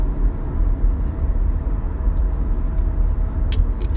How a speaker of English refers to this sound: But anyways, guys, I got another half hour of this crap to go, because that's how traffic is here